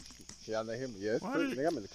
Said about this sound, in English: Are those crickets?